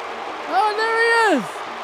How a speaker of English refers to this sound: They're booing the fuck out of him. Here comes Hollywood Hulk Hogan.